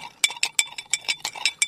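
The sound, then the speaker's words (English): A spoon stirs briskly in a glass holding sugar, bitters and a little water to dissolve the sugar, clinking against the sides about ten times in quick, steady succession. The bright ringing taps are clear, with no voices. “And now I'm going to stir”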